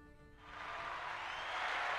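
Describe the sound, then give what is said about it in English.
A crowd cheers for their champion, a broad roaring wash of voices that swells after a brief moment and keeps building, growing steadily louder through the end. “Now, as the cheering, as I motion for the crowd to cease for a moment”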